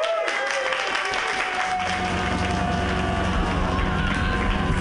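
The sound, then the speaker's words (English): A stand-up comedy audience applauds loudly and steadily for a comedian's set, dense clapping filling the whole stretch without pause, with a few tonal whistles or cheers riding on top and a low rumble underneath. “So you guys have to be really special right now and clap even bigger than you've clapped before”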